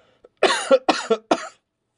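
Three harsh coughs in quick succession after hard laughing, each a loud bark with a raspy tail, spaced about half a second apart with silence after.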